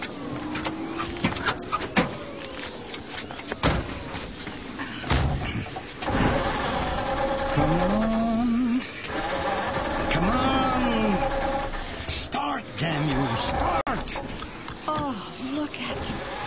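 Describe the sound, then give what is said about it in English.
A truck door slams shut, then the truck's engine cranks repeatedly, whining and sputtering without catching because it is flooded. The sounds are fairly loud, with sharp knocks and a strained mechanical drone throughout. “I've flooded it now.”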